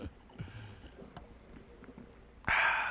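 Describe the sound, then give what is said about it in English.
After a quiet stretch with faint small noises, a sudden loud breath hits the microphone, a harsh, rushing burst of hiss that holds steady through the final half second. “Ooh, that breath.”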